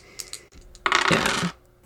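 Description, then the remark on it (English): Dice, rolled to convince others, clatter and tumble across a hard surface: a couple of light clicks, then a loud burst of rattling that rolls for about half a second before stopping, landing on double ones (snake eyes). No one speaks. “I'm going to need you to roll to convince others.”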